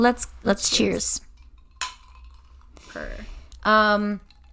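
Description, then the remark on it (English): Wine glasses holding white wine (Pinot Gris) clink together in a toast: one bright, ringing tap that fades quickly, surrounded by voices talking and a bit of tabletop clatter. “Shall we cheers?”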